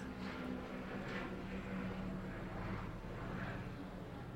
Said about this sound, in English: By the way, that's one of LA's famous helicopters traveling above us. State bird. Not really.